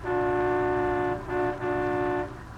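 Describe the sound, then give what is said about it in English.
A sightseeing bus in Washington, D.C. honks its horn in three close blasts, one long, one short, then another long, loud and steady-pitched, with a faint engine rumble underneath. “As we pick him up now, he's on a sightseeing bus, accompanied by his secretary,”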